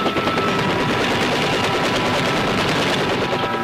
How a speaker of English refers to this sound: In spite of heavy ground fire, Army aviators get in with their dust-off helicopters, and the wounded are whisked away to safety.